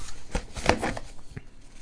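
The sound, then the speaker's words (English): A short burst of crisp card shuffling, with papery riffling and soft flicks and taps over about two seconds, no one speaking. “I'm going to shuffle these again and find our last one that we're going to go out on.”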